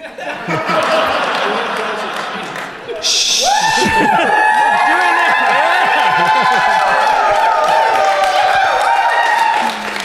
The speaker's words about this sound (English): Yeah, when do they cheer? You told them to cheer.